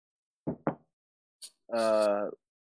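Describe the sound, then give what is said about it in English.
Two quick knocks on wood, one right after the other, followed by a short pause and then a brief spoken word. “So I think it should be a fairly easy win, knock on wood.”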